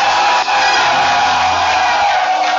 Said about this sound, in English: If you're happy about what I'm saying, I want you to lift up your voice, clap your hands, and give Jesus a shout.